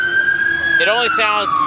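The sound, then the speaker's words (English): An emergency vehicle siren holds a steady, fairly loud wail whose pitch sags slightly as it goes by at a farmer's market, and a person starts talking over it partway through. “It only feels distressed because there's the siren there.”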